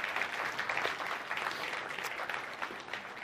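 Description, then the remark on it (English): An audience at a church service claps for fathers on Father's Day, many hands making a dense, continuous patter of sharp, bright slaps that holds at an even level throughout. “And kind of, you clap for our dads, do it.”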